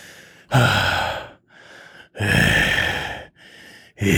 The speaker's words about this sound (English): Okay, it's all the heavy breathing I can get for that.